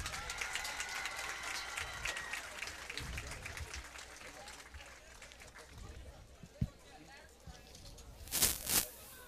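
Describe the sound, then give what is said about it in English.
A crowd applauds steadily for several seconds for senior band members being recognized, a dense wash of clapping with some voices mixed in, ending with a couple of louder bursts near the close. “Let's give these band members a round of applause.”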